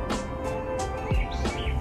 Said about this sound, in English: Birds are chirping, so we're feeling pretty good.